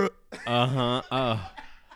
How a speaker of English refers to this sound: Coughing. Yeah. Beauty and Grace over here, folks. Yeah, my bad.